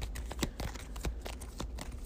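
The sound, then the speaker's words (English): A small stack of six Arkham Woods location cards from a card game is shuffled by hand, giving a quick, irregular run of crisp papery taps and flicks. It's fairly quiet, with no one talking. “All right, so Arkham Woods, shuffle it up.”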